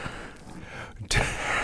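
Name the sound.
breathing into the microphone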